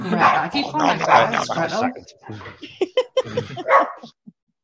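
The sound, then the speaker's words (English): An excited dog that wants to be let out barks and yips, starting in a loud, dense flurry of whiny barks and then breaking into short, sharp bursts with brief pauses between them. “Give me a second, like the dog wants to be out.”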